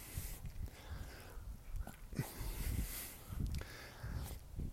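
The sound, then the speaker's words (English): Heavy, labored breathing with rough breaths in a steady rhythm over faint outdoor rustling and footsteps, from someone walking up a hill in Debs Park, Highland Park, Los Angeles, while walking a dog. “Yes, I am excited to talk to you, but that's not the only reason I'm breathing heavy. I'm also walking up a hill in Debs Park, Highland Park, Los Angeles, walking the dog as usual.”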